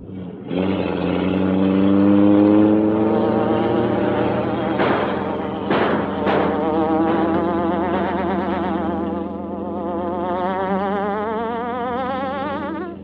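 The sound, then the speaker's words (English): The Green Hornet's armored car engine roars and climbs in pitch as it accelerates away at speed to escape pursuers, loud throughout, with a few sharp bursts cutting through midway. No one speaks. “Gotta make a run for it now. Hang on.”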